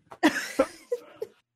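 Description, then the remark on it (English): A single forceful allergy sneeze bursts out with a sharp, breathy blast, followed by a few short, softer voiced huffs that taper off quickly. No one speaks. “You see, he sneezed.”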